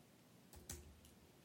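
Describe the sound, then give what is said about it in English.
A handful of soft, crisp taps on a computer keyboard sound at an uneven pace, quiet, with no voices. “You are typing like you know what the deal is.”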